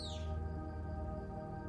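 A single quick, high chirp from a bird flying circles around a bedroom sweeps downward at the very start, then fades into a steady, droning hum that fills the rest of the moment.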